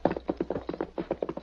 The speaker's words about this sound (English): Finally, they slowed their horses to a walk.